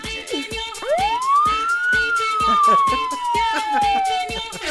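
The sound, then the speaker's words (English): A police siren lets out one long wail, sweeping quickly up in pitch and then gliding slowly down, heard over a steady thumping beat and busy background noise. “Police are already here.”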